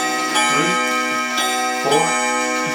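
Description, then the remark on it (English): A clock chimes five o'clock with a series of evenly spaced, ringing strikes about half a second apart, each bright tone sustaining and overlapping the next, clear with no talking. “3, 4, 5. So it's 5 o'clock.”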